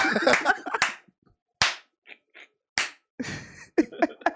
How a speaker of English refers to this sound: Reverse clap. I'll clap it up.